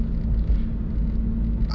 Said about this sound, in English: My exhaust is a little hoop-deed up, as you'd say. Okay. And it likes to sound like a Japanese car, pretty much, because it has some stupid exhaust that came on it when I bought it.